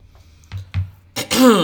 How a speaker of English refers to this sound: Don't clear your throat now.